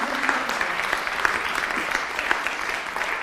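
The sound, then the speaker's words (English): A crowd applauds steadily, a dense patter of many hands clapping at once, fairly loud, with no voices standing out above it. “So let's just give him a clap, because thank you very much.”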